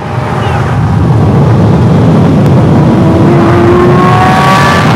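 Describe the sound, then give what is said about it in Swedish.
A Lamborghini engine roars loudly, its pitch climbing as the driver revs and accelerates, with heavy rumbling road and wind noise throughout. “Vänta, om du vevar ner rutan och vifta lite med armen så kommer han gasa på där.”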